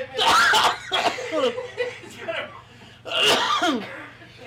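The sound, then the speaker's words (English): A loud coughing fit after a stinky fart: a few harsh, explosive coughs in irregular bursts, with strained breathy vocal sounds and gasps between them. “I got a smoker's cough and I don't even smoke.”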